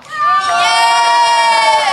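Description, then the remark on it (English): A festival crowd at 2 o'clock in the morning lets out a loud, sustained cheer, many voices whooping and shouting together for a couple of seconds, full. “So instead, I'm throwing it out to the totally sober 2 o'clock in the morning Green Man Festival audience.”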